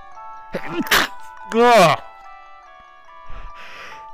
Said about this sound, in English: Oh, I'm going to sneeze. Oh, no.